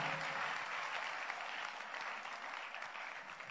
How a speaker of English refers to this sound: Give the Lord a wonderful clap of praise.